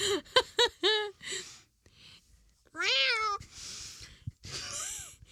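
A cat meows loudly: a quick run of short, clipped meows, then a pause before a longer, drawn-out wail and another rising meow near the end.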